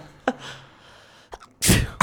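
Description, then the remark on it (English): A person does a staged sneeze: a short sharp intake, a brief pause with small catches of breath, then a loud explosive burst. A voice is imitating the sound. “That's the best fake sneeze I've ever seen.”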